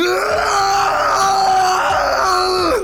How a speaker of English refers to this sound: Inside, a man was lying on the floor, apparently unconscious or asleep, but struggling against some unseen horror and crying out in pain.